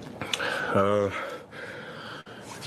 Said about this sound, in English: You know, like I said, motherfucker breathing so hard.